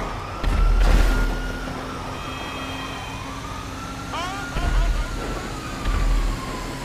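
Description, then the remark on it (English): A police siren in a video game wails steadily throughout, rising and falling slowly, with a few louder thumping bursts and engine rumble breaking in over it. “Oh, here come the cops.”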